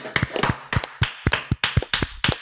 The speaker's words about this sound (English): And as we do at the end of every bracket, we are going to clap it out for the winner, number 3, Boo's Door of the best Disney on-screen gift.